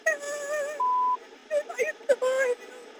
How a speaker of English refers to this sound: So you hear the radio traffic in the background. There's other things going on as we're taking this call. There's other police work happening in the background also.